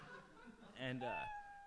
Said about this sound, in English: I was by myself, but I heard the cat, so.